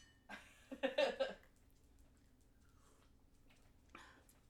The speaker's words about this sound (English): I guess we can talk about what goes in it a little bit more after you taste it, but again, this is the grapefruit juice, lime juice, light rum, and maraschino liqueur. So, please. Cheers. Cheers. Oh, yeah, cheers. Clink.